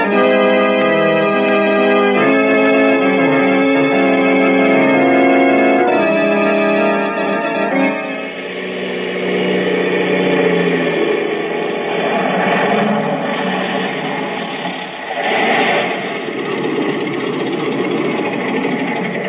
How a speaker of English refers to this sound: Here come some men now. They heard the plane landing.